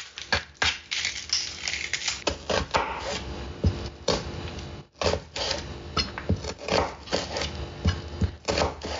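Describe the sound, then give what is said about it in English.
A knife chops an onion on a cutting board, a run of quick, uneven taps and thuds that continues steadily with brief pauses and no talking. “See, I'm being quiet now so that you can get the proper chopping experience.”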